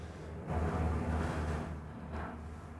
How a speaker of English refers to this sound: They looking for somebody. It's literally a helicopter.